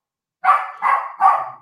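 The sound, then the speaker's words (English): A dog barks repeatedly in a quick, even rhythm, four loud barks after a brief moment of silence, with no voices. “Do you want to handle your dog?”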